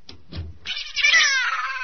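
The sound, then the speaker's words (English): After two short, soft thumps, a cat lets out one long, drawn-out meow, high-pitched and whiny, that holds steady and then sags slightly in pitch toward the end. No one speaks. “Nice, Kitty. Hush.”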